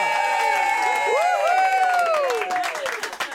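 A loud, sustained crowd cheer with whoops and rising, wavering shouts over a dense wash of applause, the clapping thinning into scattered claps toward the end.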